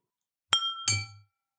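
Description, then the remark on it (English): Two bright glass clinks in quick succession, clear, each leaving a short ringing tone as glasses, one a pint, touch in a toast of cheers; no one speaks. “we say cheers to you. Cheers. Cheers. Cheers. And I have no ding.”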